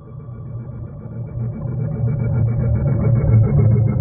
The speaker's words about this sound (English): Large vessels also ply the waters west of the Haro Strait, headed to ports and refineries in and around Seattle and Tacoma. Each one of these vessels makes sound audible underwater from tens, sometimes hundreds of miles.